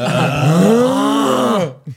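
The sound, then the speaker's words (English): A person imitates a father's loud snore with their voice: one long, rough, groaning rumble that rises and falls in pitch, strong, ending with a brief short grunt. “Your dad's snoring.”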